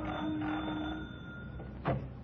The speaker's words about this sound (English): Eichelberger's address proved to be a seedy-looking hotel upstairs over a Chinese laundry. At the head of the stairs was a door marked manager. I rang the bell.